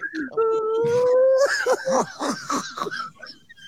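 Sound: dog howling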